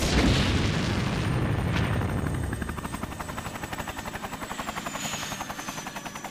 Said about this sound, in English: Command, this is Helicopter Scout 1. We are being pushed back. Command, I'm losing control of my chopper.